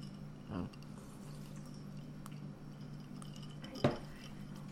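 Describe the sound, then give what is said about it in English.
Two separate glass clinks, a softer one near the start and a sharper, brighter one later, as glasses of homemade margaritas touch in a toast, over a steady low background hum with no talking. “We had I wanted to try margaritas, so we made margaritas. Here you go. Cheers.”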